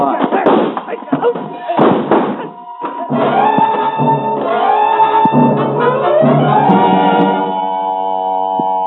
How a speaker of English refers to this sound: I threw myself at Blake, slamming my shoulder into his chest, and we crashed to the floor